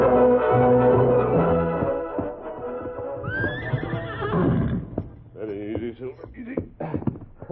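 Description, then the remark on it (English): A horse gives a loud, shaky whinny midway through, followed by scattered hoof clops and snorts, all over a steady background score. “Take Brady's horse, that one over there.”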